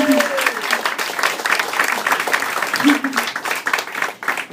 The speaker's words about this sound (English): give us a big round of applause.